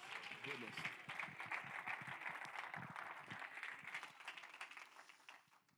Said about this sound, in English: Somebody just give him a mighty hand clap of praise.